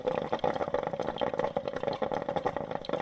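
A coffee maker percolates, a steady stream of rapid, irregular gurgles and bubbling pops that keeps going without a break. No one speaks.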